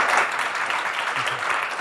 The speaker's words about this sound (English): Round of applause for the panel.